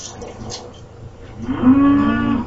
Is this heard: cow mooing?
yes